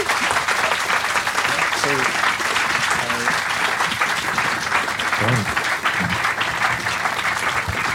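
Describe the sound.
An audience at a Scottish writers' event claps steadily for two writers for several seconds, a dense, even wash of applause with a few faint voices murmuring underneath.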